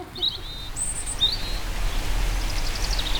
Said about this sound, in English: this workstation will now play the most soothing music in the up-to-datium's archive. ….